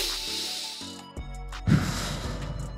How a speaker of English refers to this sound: Here's to breathing. Let's take a deep breath, y'all.